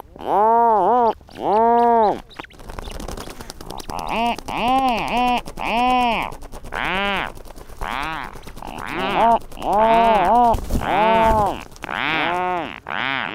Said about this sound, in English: These are several rhinoceros auklets with their chicks. Recorded at Protection Island National Wildlife Refuge in the Strait of Juan de Fuca off the Pacific Coast.